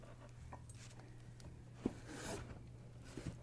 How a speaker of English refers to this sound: I think that's gonna do it for the ornaments. I'm gonna zip this back up. So now she's closing her ornament bin.